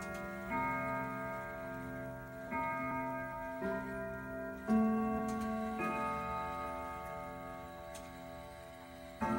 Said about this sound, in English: And anon, there strikes the ebony clock which stands in the hall of the velvet. And then, for a moment, all is still, and all is silent save for the voice of the clock.